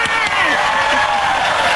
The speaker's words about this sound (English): Yay! A lot of cheering.